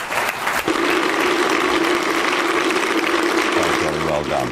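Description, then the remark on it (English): Loud, sustained applause and a standing ovation from a large crowd after a speech, everybody in the room standing and applauding, a dense unbroken wash of clapping holding steady throughout, with a faint murmur of voices mixed in. “Huge applause, standing ovation.”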